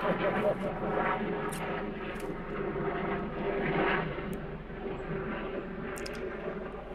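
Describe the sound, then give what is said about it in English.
A helicopter flies overhead, its loud, steady engine drone and rotor rumble filling the full seven seconds, with faint indistinct talking beneath the noise. “What do you sense the season's about and how to respond as the chopper's flying overhead? So this is a season to be silent right now.”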